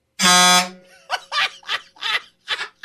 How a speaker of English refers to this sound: That thing's like a rocket launcher. That thing honks.